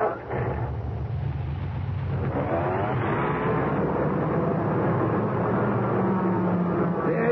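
A car engine idles and revs steadily while a customer's car is slowly backed out of a repair shop, a continuous low rumble with shifting tones throughout.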